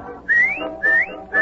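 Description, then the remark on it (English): A person whistles to call a dog named Rover, three short, rising notes in a steady repeated pattern, each one sliding upward in pitch, clear and fairly loud with brief pauses between them and no talking. “Oh, I'll bet he hears me whistling.”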